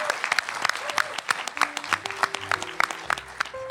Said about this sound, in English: Please join me in giving these fabulous panelists a round of applause.